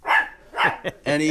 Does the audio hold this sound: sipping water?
no